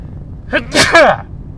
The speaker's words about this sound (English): Excuse me as I sneeze.